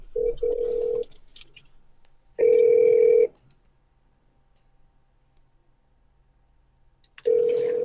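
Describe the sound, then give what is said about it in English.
An outgoing phone call's ringback tone sounds three times, each a steady electronic burst about a second long separated by long silent gaps, fairly loud with no talking, as someone is called live to leave a voicemail. “I'm gonna call him again. Call him, man. Leave a voicemail.”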